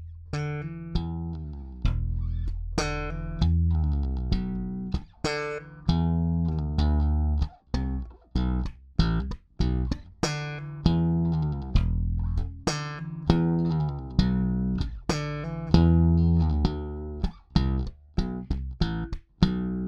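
A bass guitar, the player's first proper bass he ever bought, played solo with a slap technique: punchy low notes with sharp, percussive attacks in a busy, steady rhythm, loud and continuous throughout with no talking.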